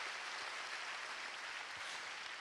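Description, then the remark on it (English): A large church audience claps steadily as a clap offering to God, a dense and even wash of applause that holds at the same level throughout, with no voices over it. “Come on, let's give God a good clap offering.”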